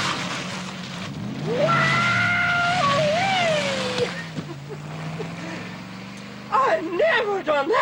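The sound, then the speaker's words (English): A car skids with a loud, sustained tire screech lasting a few seconds over a low engine rumble during a car stunt in a James Bond film, fading before a voice briefly speaks near the end. “Okay, so we have arguably one of the best car stunts in the whole Bond franchise, but what do we have for cars and gadgets”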